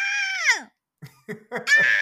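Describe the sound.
A person imitates a screaming goat: a loud, strained bleat that slides downward, then a few short choppy grunts and a final high, wavering scream, with no other talk.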